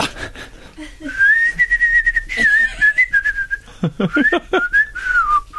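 A person whistles a slow, wavering melody up close, the tune gliding between sustained notes for several seconds, with a few soft breathy bursts and rustles partway through.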